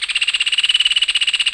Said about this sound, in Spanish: El ave nacional de Argentina, el hornero, canta a viva voz un trino rápido. Es un pájaro color marrón oxidado del tamaño de un toquí.